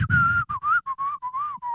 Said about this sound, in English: So this is just footage of people walking down the street whistling.